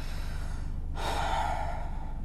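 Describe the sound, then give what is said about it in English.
A single deep, airy breath drawn in and let out during meditation, starting about a second in after near-silence, with no talking around it. “Try sitting in a quiet place, relax your hands on your knees, and start with a deep breath.”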